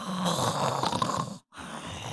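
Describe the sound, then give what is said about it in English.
A voice imitates big, croaky frog-like snores of Checkers snoring before being shaken awake by Mango: a rough rumbling drawn-out snore, a brief silent break, then another snorting inhale, fairly loud. “frog snores.”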